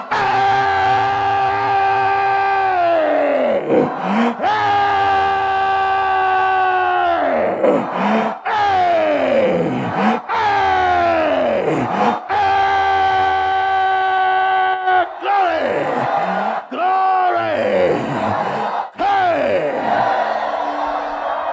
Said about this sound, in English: Give him a shout. Give him the praise. Give him the praise. Give him the praise.